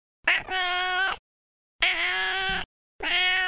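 A cat named Ophie meows three times in a row, each cry drawn out and harmonic, with short silent pauses between them. The meows are fairly loud, with no one talking.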